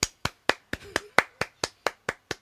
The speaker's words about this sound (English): I should put a clap track in there.